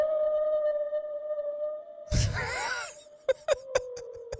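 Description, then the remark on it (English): A long, steady tonal moan holds one pitch, then a burst of noisy, warbling calls sweeps up and down before a few sharp clicks punctuate the drone. Sounds like a whale call. “It's a whale”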